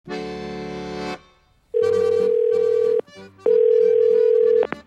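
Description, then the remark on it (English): Three bursts of an outgoing call's ringback tone on a call to a boat manufacturer, each about a second or so long with short gaps between, buzzy and steady in pitch, playing alone with no voices. “I think the next step is probably just to call up as many boat manufacturers as humanly possible.”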